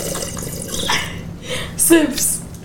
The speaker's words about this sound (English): Sips, whatever you guys are drinking.